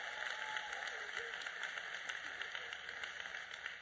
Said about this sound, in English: Give her a hand clap if you would.